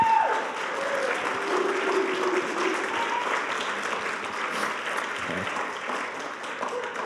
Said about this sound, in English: So give these guys another round of applause. Thank you for coming up.